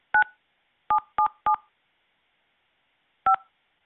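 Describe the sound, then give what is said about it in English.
Five touch-tone keypad beeps dial a zip code into the Minute Key Locksmith Services automated phone line: one beep, then three in quick succession, then a final beep after a long pause. Each tone is short, bright and steady, with silence between. “Please enter your zip code to get the service that you need.”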